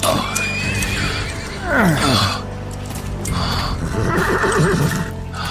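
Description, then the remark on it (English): A horse neighs loudly, a shrill whinny that falls in pitch, then snorts and whinnies again more softly, with faint hoof clops and rustling in the background. “Let me help you on your horse.”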